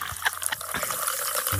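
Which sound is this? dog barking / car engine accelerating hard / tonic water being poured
tonic water being poured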